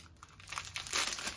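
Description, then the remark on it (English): Plastic wrap around phyllo dough crinkles and rustles as it is pulled open, a busy run of crackly handling noises that grow louder toward the end, with no talking. “Now, phyllo dough is in plastic wrap, which I'm opening up.”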